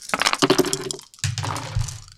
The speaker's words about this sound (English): Let's get everyone to roll those dice, and then we'll see what plays out.